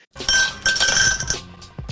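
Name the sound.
ice cube clinking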